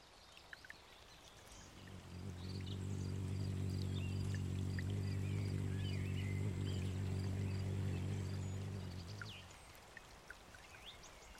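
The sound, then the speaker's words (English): A low, steady buzzing hum of hummingbird wings, caused by their very quick wing flapping, in woodlands. It swells in, holds for several seconds, then fades away, while faint birdsong chirps continue in the background. “So what you were actually just listening to was the true humming of the hummingbird, caused by their very, very quick flapping of their wings, and we're going to go more into that in just a second.”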